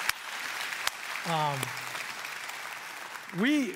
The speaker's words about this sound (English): This is our 30th. Can we give her a round of applause for putting up with me for all this time?